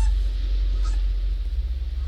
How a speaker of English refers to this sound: The Goose family paddled back to shore to eat, as Snorkel Goose could not stop honking about his adventures.